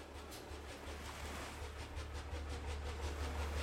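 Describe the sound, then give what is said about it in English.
A ship's engine throbs steadily, muffled, low and continuous, as it drives the ship swiftly through the darkness at night, layered with a broad rushing swish and ripple of the propeller's wash, holding an even loudness throughout with no voices. “There was no sound that night, save for the muffled throb of the engine that drove the ship swiftly through the darkness, and the swish and ripple of the wash of the propeller.”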